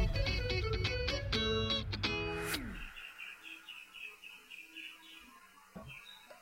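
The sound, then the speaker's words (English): A burst of loud, harmonic electronic music ends with a falling sweep, then a steady run of small, high chirps repeats softly in the background, like birds calling outside. “Can you hear these freaking birds chirping?”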